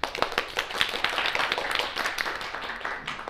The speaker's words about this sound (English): You can applaud.